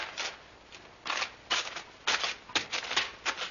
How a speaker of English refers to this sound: They stood on the platform for a minute or two, stamping their feet.